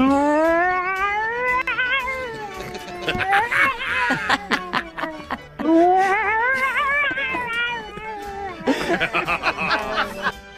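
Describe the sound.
A person imitates a yowling mother cat to stop her two cats fighting, drawing out long, wavering wails that rise and fall, in two loud bouts broken by bursts of laughter.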